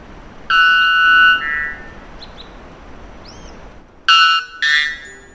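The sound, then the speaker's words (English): A male white bellbird, whose song is the loudest bird call ever documented, calls twice, each a loud, harsh, metallic blast with buzzy, ringing overtones, dropping slightly in pitch, separated by a few seconds of near-quiet with faint chirps. “This unpleasant noise, or rather song, of the bellbird is the loudest ever documented bird call, when the volume isn't turned down for podcast purposes.”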